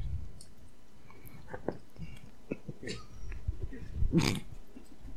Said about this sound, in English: Did you see her? Yeah, I like the slurping noises that she makes.